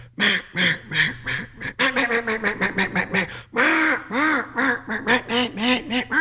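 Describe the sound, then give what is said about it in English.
A duck call blown in quick, rhythmic runs of quacks, shifting between fine, coarse and raspy tones, loud with brief pauses between sequences and no talking. “And you're getting all those different ducks, as you call them, the fine, the coarse, the raspy, and the boss.”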